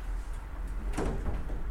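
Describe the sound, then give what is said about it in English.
A door is opened with a single short clunk and brief scraping rattle midway, over a steady low rumble, with no one talking. “Do you want to open that door just for now so people know they can come in and not embarrass themselves?”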